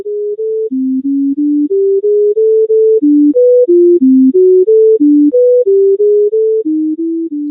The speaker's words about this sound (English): That is wild. That is robots at summer music camp. And so you're saying there are musical words in that stream of tones that babies can pick out.